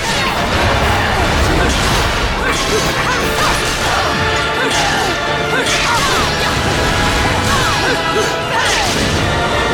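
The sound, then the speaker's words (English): A missile slams into a building in a loud, sustained crash, with repeated smashing impacts and dense rumbling debris filling the scene, while indistinct voices murmur underneath the din. “All right, we jump off the missile as it crashes into a building, and now we're on top of a different missile.”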